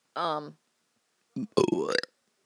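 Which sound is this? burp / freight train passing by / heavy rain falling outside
burp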